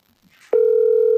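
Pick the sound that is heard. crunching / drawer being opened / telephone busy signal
telephone busy signal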